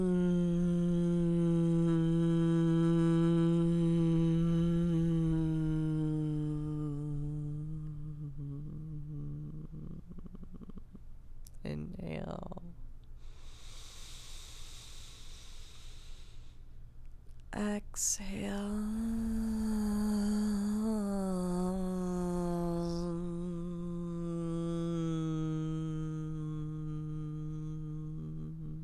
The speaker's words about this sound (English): Inhale through your nose. And hum your exhale.